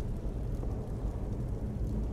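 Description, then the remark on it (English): A video game lightning bolt spell, cast by the companion Anska at a Draugr, unleashes a loud, sustained thunder-like rumble, deep and roaring, filling the whole moment without any voices. “She just shot this massive lightning bolt that threw this Draugr.”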